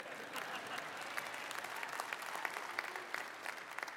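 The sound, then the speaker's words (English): An audience claps steadily during a sermon, a dense wash of many overlapping hand claps with sharp individual slaps popping out, sustained at an even level throughout. “Y'all don't have to clap.”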